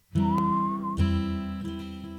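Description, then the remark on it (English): A father whistles a short, thin tune in a car at night as the family drives through their city, mostly one sustained note sliding slightly upward, over a steady low droning hum that continues after the whistling stops. “Dad whistled a little song and we drove through our city.”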